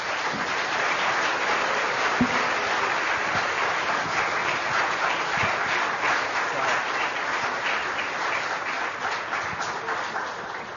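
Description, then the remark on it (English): A church audience breaks into steady applause for two people receiving certificates of appreciation, many hands clapping in a dense, even patter that holds at a fairly constant loudness for about ten seconds with no talking over it. “if we could just give them an applause.”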